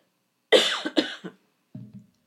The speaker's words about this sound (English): Let me get a drink of water here. My throat has a tickle in it.